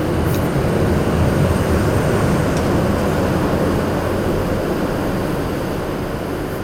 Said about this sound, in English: Well, we've got a train going underneath us.